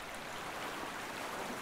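Steady, continuous rush of flowing stream water with an even hiss and no pauses, fairly soft and unaccompanied by voices.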